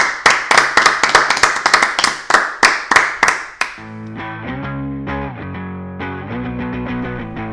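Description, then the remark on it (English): Steady, evenly spaced hand claps ring out loud and slightly processed for a few seconds, then give way to a bright musical jingle with sustained tones. “Another round of applause, I think, is all there, fellas.”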